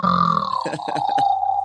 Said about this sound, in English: Making a noise, or is that snoring? That was snoring.